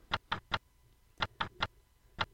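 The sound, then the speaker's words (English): A wire recorder left running clicks in quick bursts of three sharp, dry ticks, each burst followed by a short pause before the pattern repeats, with no voices present. “Oh, it's his wire recorder. He left it running.”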